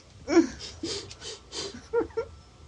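Tony Shalhoub, in a film scene, sniffs the air of an alien planet after a door is opened. He makes a series of short, breathy inhalations, four or five quick sniffs in an uneven rhythm, followed by a couple of faint, soft vocal murmurs.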